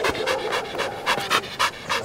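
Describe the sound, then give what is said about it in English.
A sleek, lean, dappled gray and black Belgian Malinois dog pants rapidly and steadily on a patch of grass in the hills of northeastern Alabama, each quick breathy huff repeating in an even rhythm, with no voices present. “Cooley is a Belgian Malinois, sleek, lean, dappled gray and black, panting happily on a patch of grass”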